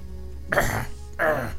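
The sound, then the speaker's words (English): A person imitates the coughing and wheezing a video game character makes when climbing ladders: two short, rough vocal bursts separated by a brief pause, fairly loud, with faint background hum. “Complete with the coughing and wheezing when you climb ladders and shit.”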